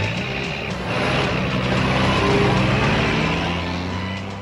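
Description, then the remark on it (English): Dense road traffic in a traffic jam rumbles steadily, with low engine drones from idling trucks and cars and a faint high tone above, continuous and fairly loud throughout. “And their journey takes them to something we see here all the time, at least in the D.C. and Baltimore area, a traffic jam.”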